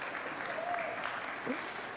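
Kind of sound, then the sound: crowd, audience applause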